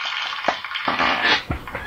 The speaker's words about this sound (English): Is that a toilet flush or applause? It does sound like both, doesn't it? Yeah, that's supposed to be applause.